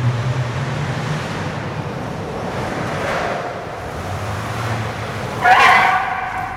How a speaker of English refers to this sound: That would abruptly end at 1 a.m. when a pickup truck would pull up and disrupt the ambiance.